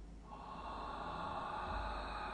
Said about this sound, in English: Still breathing in and out through the mouth.